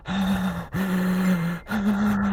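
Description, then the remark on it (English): Loud, heavy breathing, three long strained breaths in a row with a voiced, groaning edge, each drawn out and separated by brief pauses. “I need you to stop breathing so loud.”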